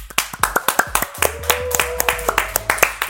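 The studio audience of The Jason Lee Show claps for a departing guest in a quick, steady patter of sharp hand strikes, bright and fairly loud, with a low hum running underneath and no voices over it.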